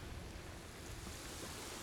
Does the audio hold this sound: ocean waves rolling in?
yes